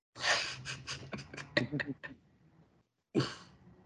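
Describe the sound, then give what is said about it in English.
A person yawns: a long breathy, voiced stretch with stuttering pulses that trails off, then a short pause and one more airy exhale. “Yeah, you're yawning.”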